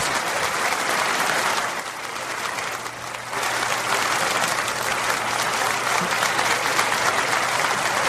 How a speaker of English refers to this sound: Just clapping. Thank you very much.